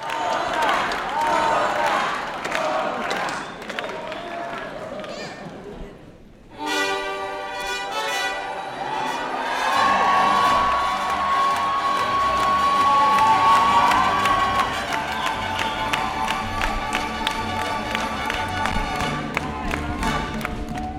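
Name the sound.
concert crowd cheering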